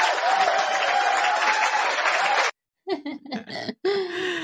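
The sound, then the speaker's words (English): A loud, steady burst of cheering and clapping fills the first couple of seconds, then cuts off abruptly, followed by a brief pause and a person speaking. “Okay, so not the asshole. We're gonna cheer for it. Whoop, whoop.”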